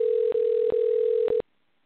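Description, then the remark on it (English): A steady electronic ringing tone from an outgoing phone call hums loudly and evenly for over a second, broken by a few faint clicks, then cuts off abruptly into silence. No one speaks. “You better pick up the phone.”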